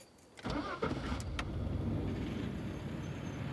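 A truck engine cranks briefly after a moment of quiet, catches, and settles into a steady, loud rumbling idle that continues to the end. No one speaks.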